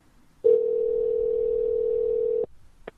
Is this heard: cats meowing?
no